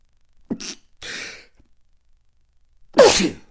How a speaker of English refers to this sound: Excuse me. Yeah. Woo! That was a hell of a sneeze.